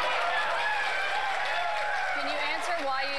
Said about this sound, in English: And of course, the sycophant crowd cheers.